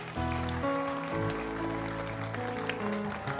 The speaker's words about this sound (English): I'm waiting for you. Clap your hands for them as they come.